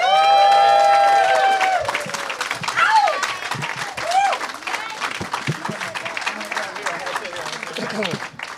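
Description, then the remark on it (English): A crowd bursts into loud, sustained applause welcoming four guests, with whoops and high whistled cheers at the start, the dense clapping continuing steadily as the cheering voices fade. “Please give it up for Dustin Ibarra, Amy Miller, Michael Dowse, and Josh Wolf.”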